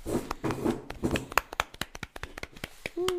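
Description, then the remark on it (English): A few people clap for a few seconds, a scattered, uneven patter of claps with some voices underneath, thinning out to separate single claps before a short tone sounds at the end. “Round of applause.”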